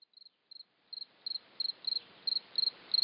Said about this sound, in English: We take you now into the company of crickets. As Ted Melillo mentioned, crickets are cold-blooded and take on the temperature of their environment. They are more active in warmer weather and tend to chirp faster.